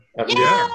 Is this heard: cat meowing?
yes